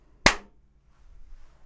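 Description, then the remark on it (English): A single sharp hand clap rings out once, loud and crisp, made to sync video with separately recorded audio, then quickly fades into a quiet low murmur of background noise. “You want me to clap?”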